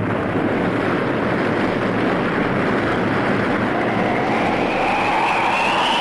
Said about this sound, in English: It's beginning to give. Suddenly, with a great roar, the huge dam collapses.